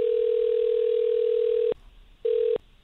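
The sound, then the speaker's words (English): A steady telephone dial tone hums loudly for nearly two seconds, cuts off, then returns briefly for a short second burst before stopping, with no voices present, as radio station 93Q in Houston places a call. “Let's get Brielle on the phone.”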